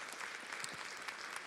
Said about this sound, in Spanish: Amén. Amén. Dáselo fuerte un aplauso, por favor, al Señor. Gloria a Dios.